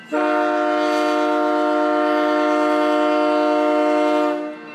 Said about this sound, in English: And that train horn, those are driving people crazy. But until these issues are resolved, the FRA is requiring them every time a train approaches a crossing gate.